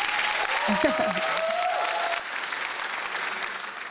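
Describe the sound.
An audience applauds a woman guest as she is welcomed onto a show, in a dense, steady wash of clapping, with a few voices calling out over it early on; the applause thins slightly but keeps going to the end.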